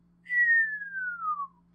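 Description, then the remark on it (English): A single clear whistle glides steadily downward in pitch over about a second, like a cartoon sound of something falling, over a faint low hum, made by a man as he lowers his hand in a falling arc to the ground. “He slowly lowered it in a falling arc at Bruce's feet, accompanied by a falling whistle sound.”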